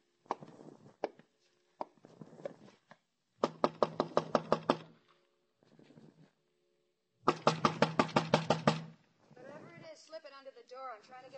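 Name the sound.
knocking on a door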